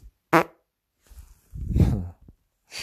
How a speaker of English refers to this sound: I've got another huge fart.